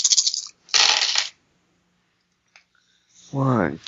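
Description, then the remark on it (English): Dice are dropped and clatter and rattle against a hard tabletop in two busy bursts, followed by a lone small click, then a voice begins speaking. “Keep dropping the dice all over the place.”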